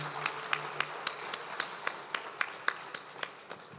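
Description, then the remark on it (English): An audience gives a round of applause for legend Alan Mills: steady rhythmic hand clapping, roughly a dozen crisp claps at an even, fairly quick pace over a faint background hiss, with no voices. “Can we first have just a big round of applause for legend Alan Mills for spending some time with us this morning.”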